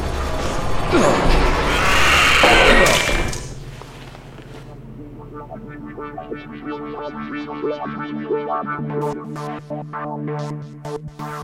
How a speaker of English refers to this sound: help me with this door. Hydraulics have gone offline. It weighs a ton.